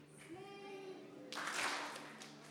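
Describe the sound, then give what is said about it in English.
A church audience bursts into clapping together during worship, a dense wash of many hands that swells and then eases off, following a few seconds of sustained, tuneful tones. “And we're going to clap.”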